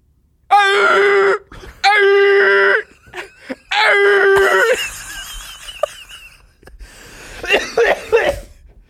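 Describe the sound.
A person imitates a beagle's bay with three loud, sustained, wavering howls in a row, followed by breathy, strained vocal noises and a final rising yelp-like cry.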